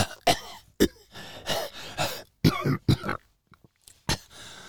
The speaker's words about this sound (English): Elizabeth coughed, violently gasping for air.